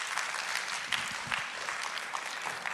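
Steady applause from an audience welcoming a man invited to share his testimony, many hands clapping in a dense, continuous patter at moderate volume, with no voices standing out.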